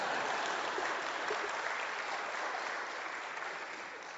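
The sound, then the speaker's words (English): An audience claps steadily for about four seconds, a dense, even patter of many hands with no pauses, fading slightly toward the end. “It'd be helpful if you clap.”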